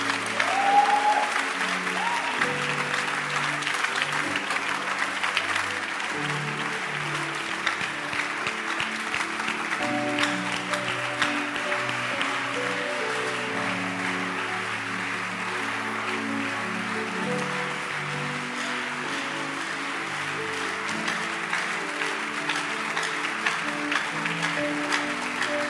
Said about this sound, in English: Keep clapping. It's a sound of victory. Don't stop clapping.